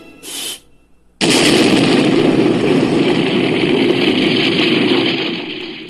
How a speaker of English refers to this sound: And an explosion. Yes, indeed. That's what makes everything funny.